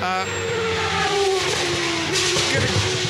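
A vintage car engine revs loudly, its pitch climbing and dropping through several surges, with a throaty, sustained roar that fills the whole moment.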